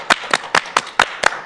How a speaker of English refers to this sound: But everybody clap your hand.